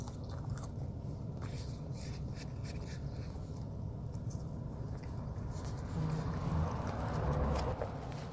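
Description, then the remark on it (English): Wet, crunchy chewing while eating, a steady run of mouth sounds and soft bites that grow a little louder toward the end, with no talking. “I am keeping every single one of the chewing noises that are audible in for your horrified listening experience.”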